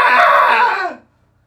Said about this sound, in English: that was today's Daily Cathartic Scream